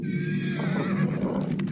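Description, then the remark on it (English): A commander's horse whinnies loudly and shrilly during a great struggle with a beast, its wavering neigh rising and falling over a low rumble of restless stamping hooves, continuous. “As we heard him fighting the beast, the sound of his horse stamping and letting out whinnies, sounds of a great struggle.”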